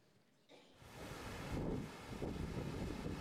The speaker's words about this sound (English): This is the Sea of Galilee. It's a little windy today.